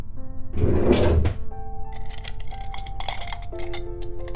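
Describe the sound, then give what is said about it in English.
A drawer slides open with a short scraping rush, followed by several seconds of small clinks and rattles as objects inside are shuffled around while someone gets bandages from it, with no talking. “Well, why don't you get some bandages from that drawer over there?”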